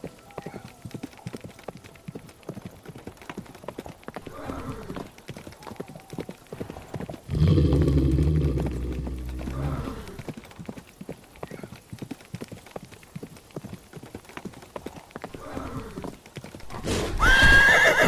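Steady clip-clop of horse hooves runs throughout at a moderate pace, broken by a loud, drawn-out neigh around the middle and another sharp whinny near the end.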